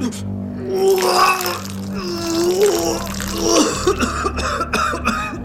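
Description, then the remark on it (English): Loud retching and gagging in strained, harsh heaves, with a wet splatter as someone vomits, continuing in rough bursts for several seconds. “I vomited and slumped against the sink, my legs threatening to give way.”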